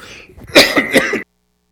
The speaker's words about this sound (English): Excuse me, Facebook. I know it is. It's probably blowing you all up there with me coughing so closely to it.